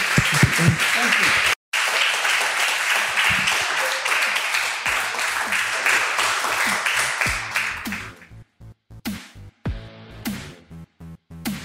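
A crowd at a Wollongong Writers Festival conversation session applauds loudly and steadily for about eight seconds, then the clapping thins into scattered, separate claps as it dies away.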